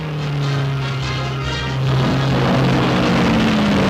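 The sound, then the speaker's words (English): Thirty race cars roar steadily and loudly around the 2.5-mile oval of the Indianapolis Memorial Day 500-mile race, their droning pitch shifting upward midway as the cars speed past, with no voices. “Zooming around the 2.5-mile oval, 30 steel-nerved pilots risk life and limb in pursuit of fame and fortune in a 500-mile spectacle of speed.”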